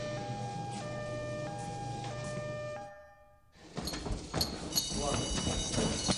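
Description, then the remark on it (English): A fire station alarm siren blares in steady, alternating tones for about three seconds, cuts off briefly, then gives way to loud clattering commotion with ringing tones underneath. “The alarm.”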